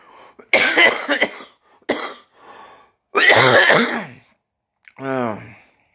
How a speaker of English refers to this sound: This dry cough I got is terrible. It's an allergy cough that is destroying my throat. So I called the doctor, and he says it's this season of your allergies because the air and the pollen is what's making you cough.